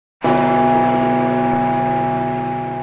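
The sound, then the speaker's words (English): A single strike of the large cast bronze Olympic bell for the 2012 London Olympics, cast in 2012 by the Whitechapel and Royal Ispouts bell foundries, pitch B, 22,900 kilograms, 3.3 meters in diameter, rising into a loud, deep, humming tone full of layered overtones that rings on steadily and only slowly begins to fade. “The Olympic bell for the 2012 London Olympics.”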